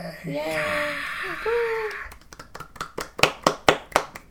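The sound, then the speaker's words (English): A sitcom audience whoops and cheers for a couple of seconds, then breaks into steady, rhythmic clapping that grows louder toward the end. “You just get the audience cheering. Maybe I'll put that in.”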